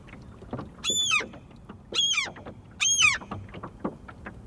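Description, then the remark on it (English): A seagull calls three times, loud harsh descending cries about a second apart, over a steady low rumble of water and boat noise. “The seagull that I was just watching, what is it going to dive bomb me?”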